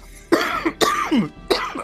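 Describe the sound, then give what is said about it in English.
Three harsh, forceful acted coughs in quick succession, loud, each a sharp burst with a raspy tail, a man hacking out a lungful of gas he breathed in. “taking a big, unfortunate, while he is thinking, a breath of fresh air, ends up taking a big lungful of the gas. But he coughs it out.”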